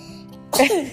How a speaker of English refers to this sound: That was a good sneeze. I felt that one coming.